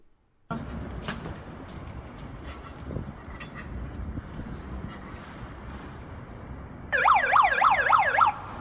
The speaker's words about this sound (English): She accidentally pushed the siren button on her mini megaphone.